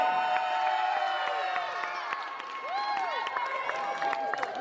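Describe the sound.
A crowd cheers and whoops loudly, with scattered clapping beneath a dense, sustained roar of voices and rising shouts that holds steady throughout.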